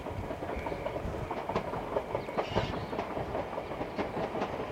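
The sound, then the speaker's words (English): A train rumbles past on the tracks, a steady dense roar with repeated clickety-clack wheel beats across the rails, continuous throughout, with no voices. “Sorry about the trains.”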